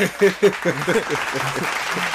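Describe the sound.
Hands clap in a steady, dense patter of applause throughout, with a voice speaking over it for the first half before the clapping carries on under fainter talk.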